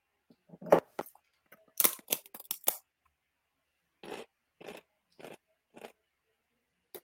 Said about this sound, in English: I really love hearing you chew right now.